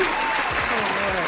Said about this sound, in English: But, yo, round of applause to everybody.